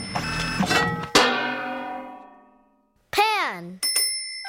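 After a busy jumble of sound, a single bright bonus chime strikes and rings out, fading smoothly over about a second and a half. Short warbling, sliding tones follow after a pause.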